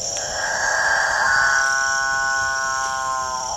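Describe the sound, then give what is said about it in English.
A male capuchinbird's display call, a drawn-out, moaning, harmonic drone that builds and then holds steady for several seconds over a constant high insect-like hiss. “apparently irresistible noise attracts the female capuchin birds, which jostle each other ruthlessly in the quest to get close to the studliest of the displaying males.”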